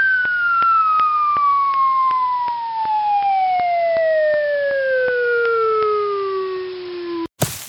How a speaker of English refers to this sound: Nope, that was falling off a cliff in a cartoon, which we all did in 2020, but I was really kind of thinking train wreck.